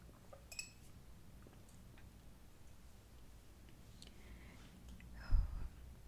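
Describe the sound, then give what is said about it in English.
Quiet sounds of someone drinking tea from a cup: a light clink of the cup early on, faint handling noises, then a soft sip and a cup bump near the end, with no talking. “And I'm going to drink a little bit of water. Tea, actually.”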